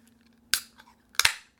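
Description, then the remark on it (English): A can of Endless Rain beer by Hopfly Brewing Company, bought at Rocky Mount Mills in Rocky Mount, North Carolina, is cracked open: a sharp metallic click, a faint tick, then a louder double snap with a short fizzing hiss, with no talking over a low steady hum. “And we've got a beer here, as we always do. Let's give it a little bit of a crack here.”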